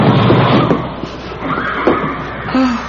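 A door opens amid a dense, rumbling background, with a brief scraping, creaking tone near the end of the movement; muffled voices and laughter-like sounds murmur underneath.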